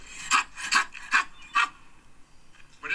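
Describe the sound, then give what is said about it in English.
A man imitates a dog, letting out four sharp, rasping bark-like yelps in a steady rhythm, loud, followed by a quieter stretch with only faint background noise. “That's not a dog, it's a man making that noise.”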